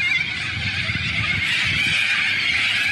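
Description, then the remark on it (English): A dense, unbroken din of countless birds calling at once, loud, a shrill chattering wall of sound that never pauses, with no voices. “people are comparing the video to a scene out of Alfred Hitchcock's The Birds. Have you seen that movie? Yeah. Yeah. This is what it sounded like.”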